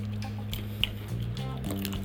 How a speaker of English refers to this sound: Now this next episode, I decided to talk about, and excuse me while I chew this popcorn, this shit good as fuck.